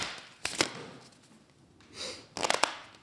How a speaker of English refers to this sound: Shuffle deck of cards.